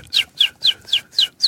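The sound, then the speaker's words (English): A person whistles a bird imitation: six quick, high chirps, each sliding downward in pitch, repeated at a steady rhythm. The sound is clear, with no talking. “Oh, you have the bird sound. You have a really good bird sound.”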